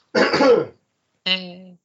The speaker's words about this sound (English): It's my turn to cough now.